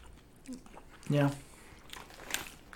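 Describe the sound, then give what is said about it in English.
Kettle brand bourbon barbecue potato chips being crunched and chewed in a few short, crisp bursts, with a brief voiced murmur partway through and quiet background between bites. “Now, this is the brand kettle.”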